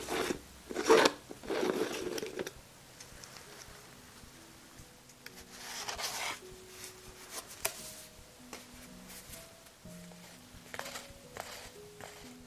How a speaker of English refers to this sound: I'll be using this heart-shaped sponge that expands once submerged in water.